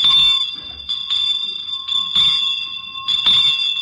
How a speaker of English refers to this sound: And now this next bell is one you often hear on the streets around Christmas time. Listen.